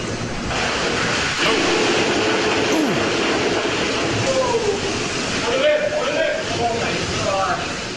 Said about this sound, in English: You see all these giant tanks of beer. He seems to, I don't know, twist something on this one tank of beer and then it just blasts out with fire hose-like pressure out of the tank.